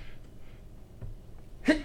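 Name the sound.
sneeze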